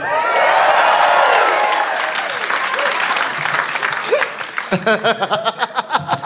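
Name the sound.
audience clapping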